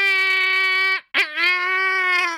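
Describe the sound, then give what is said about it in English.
A voice imitates a modem squeal, a coded message sent through a modem: a loud, steady, high-pitched nasal tone held for about a second, a brief break with a quick warbling sweep, then the sustained squeal again. “it turns out that squeal noise is a coded message being sent through a modem.”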